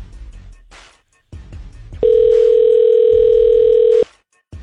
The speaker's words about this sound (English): so we're trying to get him back on the phone. It's ringing. That's a good sign.